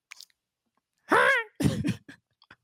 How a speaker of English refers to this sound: Yeah, at that point, you got to clear your throat.